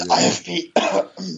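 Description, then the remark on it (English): Two loud coughs in quick succession, each a harsh voiced burst with a rasping tail, sounding almost like throat clearing, with no talking around them. “you don't get to just cough that away.”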